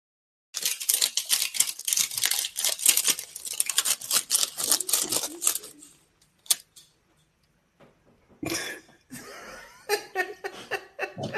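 Paper crackles and rips as an envelope holding a letter is torn open, a dense run of sharp crinkly tearing noises followed by a few scattered clicks, then another short burst of rustling paper.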